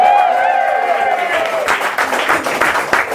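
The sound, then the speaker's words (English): A live audience at the True Story vegan cafe whoops and cheers with rising shouted voices, then breaks into dense, continuous applause with sharp claps, loud throughout. “Can we give them a massive cheer?”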